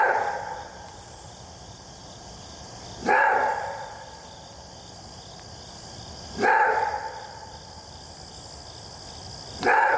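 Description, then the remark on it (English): A maned wolf gives deep, hoarse roar-barks, three of them spaced about three seconds apart, each loud and abrupt, over a steady background of insect chirring and night ambience. “They also have an interesting call, which is described as a roar bark, and here's what it sounds like.”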